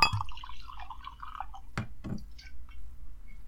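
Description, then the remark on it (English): Wine from a freshly uncorked bottle glugs and gurgles as it pours into a glass for a second or so, followed by two sharp knocks and a few faint drips. “Let us uncork and pour.”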